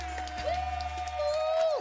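A crowd applauds and cheers in a dense, steady wash of noise, with a long, sustained whistle-like tone that slides up, holds, and then drops away at the end.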